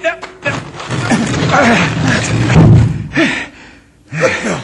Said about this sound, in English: That rock swung open just exactly like a trap door. Perfectly balanced. The ancient Aztecs built those tilting doors to hide the entrance to the mines.